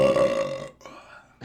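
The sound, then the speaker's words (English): A loud, forceful burp rumbles for under a second with a rough, low, buzzy tone, trails into a quieter gurgling tail, then a short new sound starts at the very end. “Ooh, that was aggressive. Tasted like chicken nuggets and beer.”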